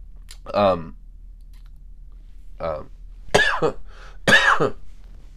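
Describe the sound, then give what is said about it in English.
A man who is sick with a cough and allergies coughs several times in short, harsh bursts, with brief pauses between them. The coughs are fairly loud, with no speech in between. “it's cough, man, and allergies and sickness all combined.”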